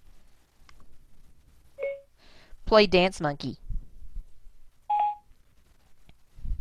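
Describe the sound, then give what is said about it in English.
A short electronic activation tone from a smart speaker assistant button, followed by someone speaking a brief command, then a second short, slightly higher acknowledgement beep. “And now what I'm going to do is press my assistant button on the speaker.”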